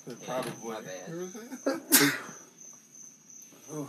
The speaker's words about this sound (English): My bad. I don't ever sneeze just once.